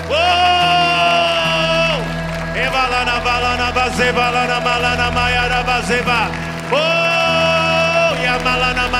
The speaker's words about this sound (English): Come on, come on, don't be silent, don't stop clapping, don't stop lifting your voices, don't stop.